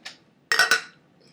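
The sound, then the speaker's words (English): Two quick glass clinks close together, bright and ringing, as glasses of beer touch in a toast before tasting, with a faint soft sound just before and no talking. “All right, cheers. Let's try it.”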